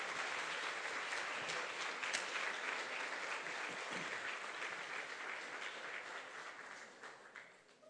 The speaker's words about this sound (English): So as they come up here, would you just clap and welcome them very graciously this morning?